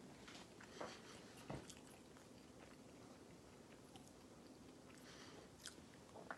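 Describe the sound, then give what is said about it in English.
Crunchy chewing of the crust of frozen garlic bread, with irregular crackly bites and moist mouth sounds repeating steadily for several seconds, no talking over it. “I like the crust. It has nice edges, these little edges right here. They're real chewy and crunchy.”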